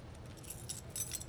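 A bunch of keys belonging to someone's wife jingles, bright metallic clinks coming in a few quick shakes over a low background hum, with no one speaking.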